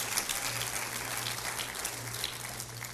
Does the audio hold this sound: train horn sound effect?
no